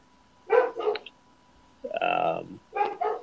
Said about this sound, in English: Somebody got a dog? Oh. Yeah, that's Sierra in the background.